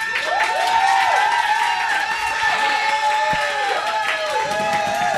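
An audience claps and cheers steadily for about five seconds to vote for a contestant, dense applause mixed with rising and falling whoops and shouts, loud and continuous throughout.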